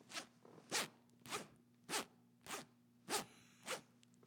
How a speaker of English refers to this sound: You start. I'll do the zipper thing to start.